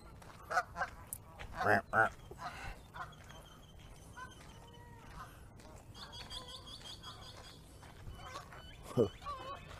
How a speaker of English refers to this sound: I'm assuming that they're geese because they were hanging out with the geese.